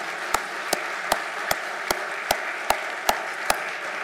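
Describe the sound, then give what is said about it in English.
Steady, evenly spaced claps, about nine sharp slaps in a regular rhythm, an audience clapping in unison over a constant hiss to honor a pastor's 40 years of service. Nobody speaks. “I mean, that within itself deserves an applause.”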